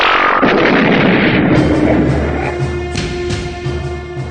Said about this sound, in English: Did you guys see that explosion?